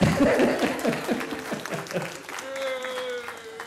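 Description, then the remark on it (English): A small crowd claps lightly and briefly for two volunteers acting as turtle doves, the patter fading after a couple of seconds as a steady, sustained vocal tone rises over the last of it. “Come on, let's hear it for our turtle. Clap softly, though.”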